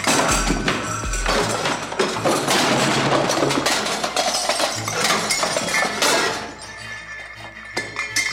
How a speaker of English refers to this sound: But as soon as you smack it, you hear from the kitchen, cabinet doors kind of get thrown open and a few plates crashing onto the ground.